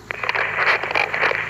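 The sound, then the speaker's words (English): A steady wash of radio static hisses for a second and a half, fairly loud, with faint crackles and pops flickering through the noise and no voices; the static is interference from tunnels blocking a radio call. “It must be interference from these tunnels.”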